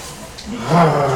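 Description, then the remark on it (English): A person gives a short, growly vocal imitation of a dog bark to scare someone, a rough voiced burst that swells louder toward the end and lasts about a second. “Yeah, I'm just going to bark and scare you.”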